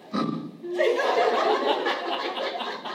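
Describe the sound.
A voice imitates a fart: a short low blurt, then a loud, drawn-out buzzy raspberry that sputters on for a couple of seconds.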